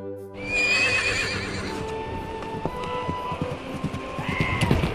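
A horse gives a loud, shrill whinny that trails off, followed by the steady clip-clop of hooves on a hard surface.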